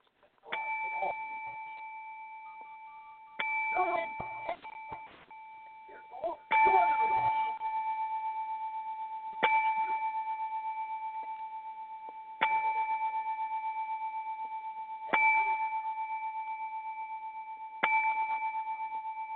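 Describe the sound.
A clear bell rings out seven times at slow, steady intervals, each bright tone lingering and fading before the next strike, with faint voices murmuring under the first few rings.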